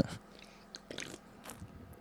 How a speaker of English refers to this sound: Sorry, I had to get a sip of beer.